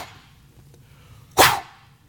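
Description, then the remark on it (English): A deer's alarm snort, a deer blowing at a hiker at Lake Thunderbird: one sharp, loud, breathy blast of air that rises abruptly and fades within a fraction of a second, over a quiet background. “It's a deer blowing at you.”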